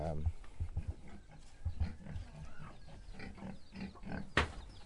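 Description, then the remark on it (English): Pigs grunt repeatedly in short low bursts in a piggery, with a sharper squeal-like snort near the end and background voices murmuring through the scene. “So he's taking me to his piggery now.”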